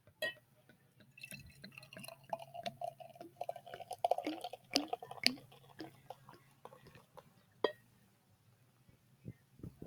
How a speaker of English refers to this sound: Oh my God. It even went gook, gook, gook, gook. It was like a cartoon pour. That was amazing.